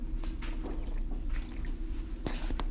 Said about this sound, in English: Let me get a sip of water.